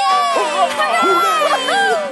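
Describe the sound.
A crowd at a contest cheers loudly for about two seconds for the engine called the Rail Rocket, many overlapping voices shouting and whooping together in a steady, excited roar.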